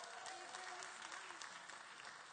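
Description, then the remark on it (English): An audience applauds the speaker's 17-year-old daughter with steady, dense hand clapping that holds at an even level throughout, with a faint murmur of voices underneath. “Y'all give her a big hand clap.”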